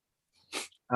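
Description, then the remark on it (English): A person lets out a single sharp sneeze, a brief breathy burst after a faint inhale, and a voice starts speaking right after. “you guys want to say C and B tier while I sneeze?”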